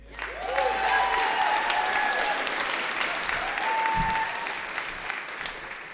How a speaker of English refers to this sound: Guys, I want you to give a warm applause to our next storyteller